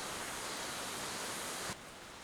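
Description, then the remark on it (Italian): Rain pours down in a steady, dense hiss with no voices, then cuts off abruptly near the end, leaving a quieter, duller background noise. “Forse adesso interrompo la registrazione, ci risentiamo appena smette di piovere.”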